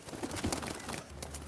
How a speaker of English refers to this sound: And boom, she turns into a sparrow and flies out the window.